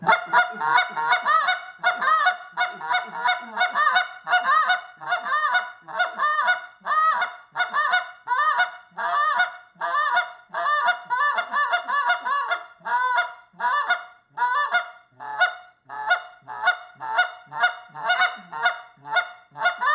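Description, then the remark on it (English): A goose call blown in a goose-hunting calling sequence, a rapid, steady run of sharp clucks mixed with drawn-out moans, loud for the whole stretch with no talking, closely imitating honking geese. “GOOSE CALLING: MEAT & POTATOES CALLING LESSON for BEGINNERS”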